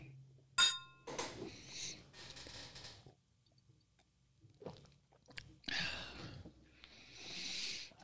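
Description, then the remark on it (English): A single bright clink of glasses tapping together in a toast rings out near the start, followed by scattered soft handling and sipping-like noises, otherwise quiet. “Yeah, so cheers. Sorry. Cheers.”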